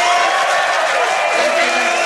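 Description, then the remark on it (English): A dense, steady wash of audience applause for Joe Lycett, with cheering and a few whoops rising over it, loud and sustained throughout without a break. “So, ladies and gentlemen, please give a massive round of applause to Joe Lycett!”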